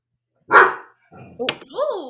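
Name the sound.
dog barking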